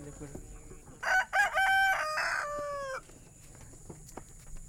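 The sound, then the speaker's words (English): A rooster crows loudly once, a long harmonic call lasting about two seconds, over a quiet outdoor background with faint scattered clucks and small farmyard noises, on a hot Saturday afternoon in Comer, Georgia, where a refugee woman is feeding her chickens, hens, goats and ducks. “Moopaw is feeding her chickens, hens, goats, and ducks.”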